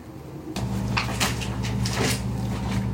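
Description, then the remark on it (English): A fridge door pops open and a steady low electrical hum rises, with several soft clunks and rattles as eye masks are put inside before the door is pushed shut. “I'm putting our eye masks in the fridge.”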